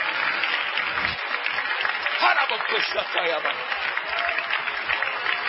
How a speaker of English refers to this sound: Let's give the Lord a good hand clap of praise.